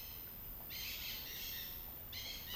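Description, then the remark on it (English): Two black birds circling overhead call: a long, harsh, high-pitched cry stretches for about a second, then a second call starts near the end. Both sound quiet, with no one speaking. “There's two black birds circling me.”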